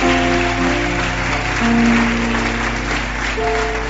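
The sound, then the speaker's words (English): An audience claps steadily and loudly for several seconds, the dense patter of many hands layered over sustained keyboard chords, with no one speaking. “Increase that clap often.”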